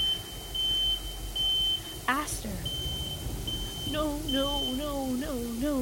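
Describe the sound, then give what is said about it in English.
A high-pitched electronic alarm sounds in long, repeating steady beeps with short gaps, continuing throughout while a person shouts and then speaks urgently over it. “The system's going off, but there's still things in the vents.”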